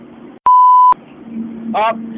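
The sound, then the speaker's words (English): A single loud, steady censor bleep tone lasting about half a second abruptly cuts into a man's speech to cover bad language, and the speech resumes right after it ends. “So don't say any bad language or I will beep it out, I swear to god.”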